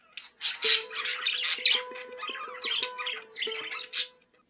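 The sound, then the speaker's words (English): An imagined call of the extinct Carolina parakeet, as it might sound if cloned: a quick series of harsh, raspy, screechy squawks coming in rapid bursts with brief gaps and no voices. “And this is what the tweet of the extinct Carolina parakeet might sound like if scientists ever clone a modern-day version of the now-extinct bird.”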